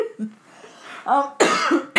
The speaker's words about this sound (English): Excuse me. If I sound like if I want to cry, it's because I want to really cough.